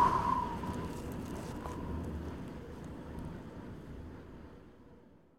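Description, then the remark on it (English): A soft, steady breeze rushes and rumbles, carrying a faint, thin whistling tone at the start before the whole sound gradually fades away over a few seconds. “A breeze creates the faintest whistle, as if it were calling you to return.”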